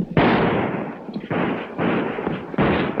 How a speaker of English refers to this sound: Jed aims as Bill rides closer, firing all the way.